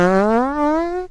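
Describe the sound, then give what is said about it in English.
A single buzzy fart sound effect, fairly loud, its pitch sliding steadily upward for about a second before cutting off, with no talking. “I do have a fart sound. I forgot that I could do that.”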